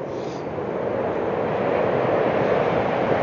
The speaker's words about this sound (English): And there are so many distractions around. Especially, there are planes flying by every few hours. It's so annoying.